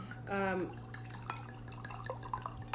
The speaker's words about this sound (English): just poured me a fishbowl of wine